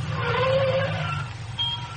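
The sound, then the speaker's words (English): A car engine hums steadily, its low rumble easing off partway through as the car slows to pull over and park, followed by a faint high electronic tone near the end. “Why are you stopping, Happy? I gotta park.”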